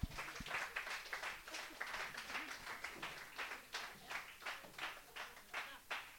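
A small audience claps steadily for several seconds, a dense patter of hand claps, fairly soft and even throughout with no voices over it.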